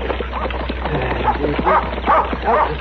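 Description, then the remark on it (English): A dog barks repeatedly in a quick series of sharp yelps, with a steady low hum running underneath. “Get away, dog.”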